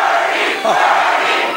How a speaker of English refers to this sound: All right, while they chant and shout and feel the burn, in quotes, we will get the very latest from CBS Radio News on the Iowa caucus